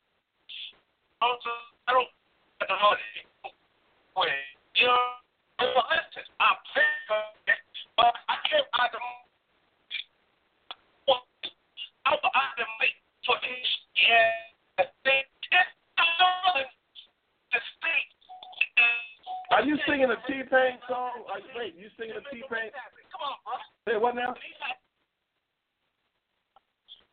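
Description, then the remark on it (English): A voice comes through a thin, narrowband phone line that keeps cutting in and out, the speech chopped into stuttering, garbled fragments with brief dropouts throughout, ending with a few seconds of silence. “It ain't my phone breaking up.”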